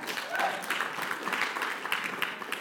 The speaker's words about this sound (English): And give the Lord a clap of praise this morning.